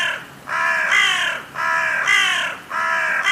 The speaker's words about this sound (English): Let's listen to the sound of a crow. What do you hear? I definitely hear caw.